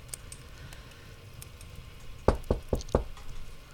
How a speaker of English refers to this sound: He knocked on the door, and he heard a soft shuffle of her feet against the floor.